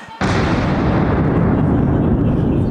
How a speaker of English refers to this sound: Fire the cannon.